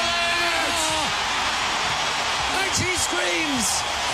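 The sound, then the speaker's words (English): The tennis crowd in Rod Laver Arena roars and cheers loudly and continuously as Ash Barty wins the Australian Open singles title against Collins, with individual voices shrieking and whooping above the dense wall of noise for the full few seconds. “And the crowd screams, and Australia screams.”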